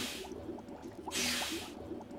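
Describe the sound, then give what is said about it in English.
Steam generator 1 starts up: a burst of steam hiss, then a louder, longer hiss a second later, with soft bubbling and gurgling drips running throughout. “Steam generator 1, activated.”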